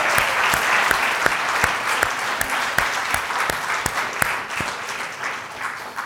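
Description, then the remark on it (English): An audience applauds for Jesus, a dense wash of many hands clapping at a fairly loud, even level, with a few sharper individual claps standing out at a regular pulse throughout. “Come on, give Jesus a good clap of me.”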